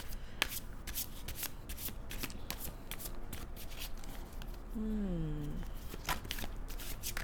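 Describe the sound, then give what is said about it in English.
Tarot cards being shuffled: a steady stream of crisp, papery flicks and riffles, fairly loud throughout, with a brief wavering whine rising and falling partway through. “My deck is being stubborn. It wants me to figure it out on my own.”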